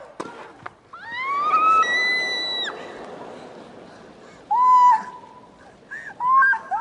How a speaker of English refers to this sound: She fell over, did the splits, and then squealed like a stuck pig for about 3 minutes, and then bravely fought back to win her match.